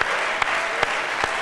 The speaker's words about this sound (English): Why don't we give the Lord a hand clap of praise, thanking Him for a revelation and an understanding of who He is.